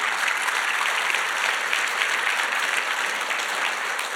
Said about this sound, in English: No, okay, so, hey, praise God he's here. You can sit down. You can give him a round of applause for being here.